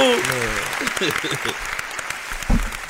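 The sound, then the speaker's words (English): A short burst of clapping from a small group, dense and crackly, with voices talking and calling out over it, then a sharp thump near the end. “Round of applause one time, man.”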